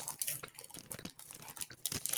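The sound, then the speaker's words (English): Wet chewing of a crunchy O. Henry candy bar of peanuts, chewy fudge and caramel in a chocolatey coating, with irregular bites and crackly crunches in quick succession and no voice over the top. “I'm still chewing it. It's still good.”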